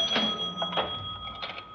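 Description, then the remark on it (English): A cash register drawer opens with a few quick mechanical clacks and a sustained metallic ring, fairly quiet, with no one speaking. “I told you, there's the cash register. Help yourself.”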